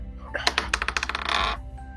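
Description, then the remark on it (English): Dice clatter across a hard tabletop in a quick run of sharp clicks, ending in a brief rattling skitter before settling. Fairly loud, with no voices. “Roll your dice”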